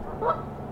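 A single short goose honk rises briefly out of a low, steady background hum, fairly quiet, with no voices present.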